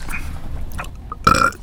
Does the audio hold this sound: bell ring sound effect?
no